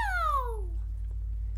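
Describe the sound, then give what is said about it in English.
A single short cat meow, a clear, bright cry that slides steadily downward in pitch and fades within a second, followed by quiet with a steady low hum underneath. “I'm a vegetarian cat.”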